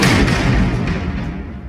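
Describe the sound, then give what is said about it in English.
Spinning mechanical platforms slam to a stop at the end of their spin: a huge, deep mechanical slam with heavy low rumble and broad crashing noise, ringing on loudly and fading only slightly over a second and a half. No voices. “they just spin and make these loud ratcheting noises, like, and they slam at the end, make this huge, deep slamming sound.”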